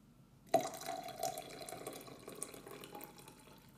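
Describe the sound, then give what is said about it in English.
Hot water pours steadily into coffee grounds in a container after a sharp start, a continuous splashing, trickling stream with no talking, as the rest of the water is poured in up to 2.5 inches. “So now what I'm going to do is I'm going to pour the rest of the water in.”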